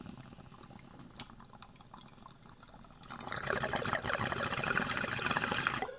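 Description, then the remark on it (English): Water bubbling in a bong: after a quieter stretch with a single sharp click, a dense, steady gurgle of bubbles rises and continues loudly to the end. No one speaks. “Let's get some bong ASMR in here.”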